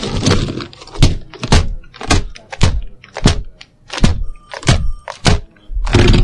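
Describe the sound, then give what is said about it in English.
A keyboard is smashed against a desktop again and again in a morning ritual, about nine loud plastic impacts with rattling clatter, coming in a fast, uneven rhythm with no talking. “My morning ritual of smashing my keyboard on the desktop.”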